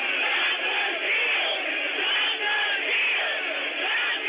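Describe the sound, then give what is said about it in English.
A large crowd of rioters on the east side of the Capitol roars and shouts continuously, a dense wall of overlapping yells and chanting voices at a steady, loud level with no pauses. “Here's what that crowd looks like on the east.”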